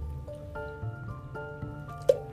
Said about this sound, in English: Okay, hang on, guys. I got to take a sip of my juice. I'm drinking juice. I am drinking juice.